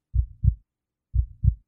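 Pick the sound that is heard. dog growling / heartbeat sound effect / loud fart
heartbeat sound effect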